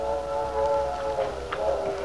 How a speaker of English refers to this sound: There's our whistle, Lefty. Yep, the 7:15. Some engineer on that train. Always right on the dot.